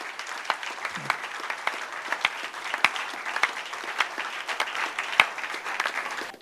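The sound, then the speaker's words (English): A church audience gives a clap offering to Jesus, clapping together in a dense, steady burst of applause, many hands overlapping into a continuous crackling roar with a few sharper individual claps standing out, lasting several seconds without speech. “Can you give Jesus a big clap offering?”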